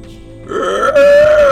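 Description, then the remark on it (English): A voice imitates an alien creature's scream: a strained, guttural cry rises out of near-silence and swells into a loud, sustained, harsh shriek that holds steady to the end. “No, but I've been practicing my alien noises.”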